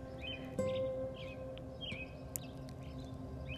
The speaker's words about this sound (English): as we watch the sunrise come up together today, right over the mountaintops, listening to the beautiful birds.